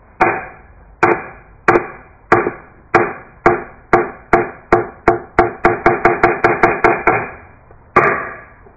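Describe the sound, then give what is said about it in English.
A han, a big, thick wooden board at the door of a Zen meditation hall (Zendo), is struck with a mallet to call people to practice: loud, resonant knocks, starting slow and evenly spaced, then speeding into a quick accelerating roll before one final ringing strike. No voices. “They hit the han is what this piece of wood is called. They bang the han.”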